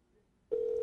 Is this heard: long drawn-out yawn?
no